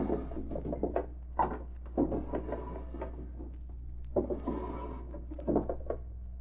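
Wooden desk drawers in Lou Ellis's private office slide open and bump shut several times in quick, uneven succession as someone searches his desk by flashlight, with scraping runners and dull knocks, moderately loud over a low steady hum, no voices.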